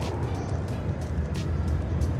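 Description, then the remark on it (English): Steady outdoor traffic ambience at Nashville International Airport, with a continuous low engine rumble and intermittent brief hissing bursts from vehicles moving around the airport, with no clear speech. “I'm down at the Nashville International Airport.”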